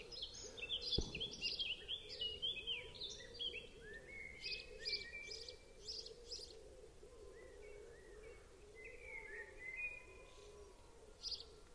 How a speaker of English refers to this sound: The birds are perhaps past their peak activity.